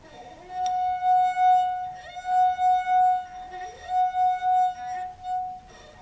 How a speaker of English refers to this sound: And then what we asked you to do was to drink half of the water from the glass and play the note again. Now, we're going to find out exactly what happens.